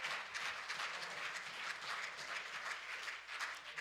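An audience at a gospel sermon claps steadily for several seconds after the preacher asks those who understood to clap, a dense, even wash of many hands with no voices over it, holding at a fairly constant loudness throughout.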